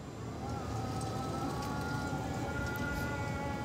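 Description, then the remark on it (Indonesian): An Islamic dawn (subuh) call to prayer drifts in as a long, sustained melodic voice with slowly wavering pitch, held steadily over a constant wash of background noise, with no one talking. “Ntar kena pasal karet, jadi guys kita denger azan dulu guys.”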